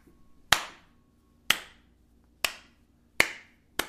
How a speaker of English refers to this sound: Round of applause.